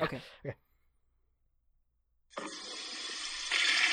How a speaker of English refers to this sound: That was a long flush.